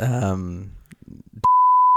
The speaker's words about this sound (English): Well, you have to bleep that one out too.